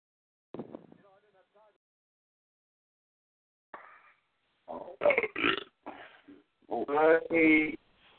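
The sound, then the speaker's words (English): A series of loud, drawn-out belches, starting with a short croaky one, then a pause before several longer, rumbling burps that swell in volume toward the end. “I'll take Famous Belches, too.”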